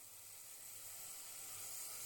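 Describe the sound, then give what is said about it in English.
Extra virgin olive oil sizzling steadily in a frying pan while fish cooks in it, a continuous crackling hiss that swells slightly louder over a couple of seconds, with no talking. “Little bit of nice olive oil, extra virgin, sizzling in the pan.”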